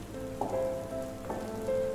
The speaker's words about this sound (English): Walk up to the lighthouse and open the door. now inside, sheltered from the storm outside.